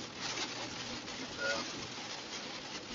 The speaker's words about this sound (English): Yep. It is raining again. Yep. So. Big old fat rain, too. Yeah.